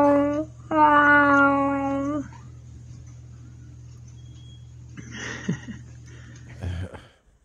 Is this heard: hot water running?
no